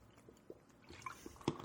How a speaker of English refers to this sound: And I'm going to have a sip. So just bear with me.